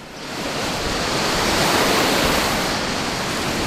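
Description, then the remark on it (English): A loud, steady roar of heavy, raging ocean surf fills the whole stretch, dense and churning, swelling slightly in the middle with no individual wave breaks standing out and no voices. “And this place is so peaceful and so still, it is easy to forget that just a few miles away, the ocean is raging.”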